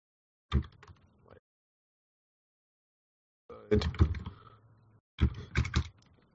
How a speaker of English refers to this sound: We are typing this tweet as we record. Yeah. And then just, we love you or something. Yeah. We love your work. Yeah. There we go. That's sent.